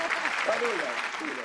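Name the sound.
applause sound effect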